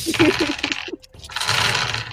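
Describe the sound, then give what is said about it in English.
A handful of eight-sided (D8) dice clatter as they are scooped together, a brief pause, then a sustained, dense rattling as they are shaken, fairly loud. “Yeah, something like a waterfall or a rain stick. I'm going to need way more D8s.”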